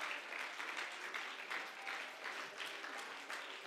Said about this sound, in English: Let's stand to our feet right now. Let's give God a good hand clap of praise right now. Let's thank him that he knows what needs to happen in our lives.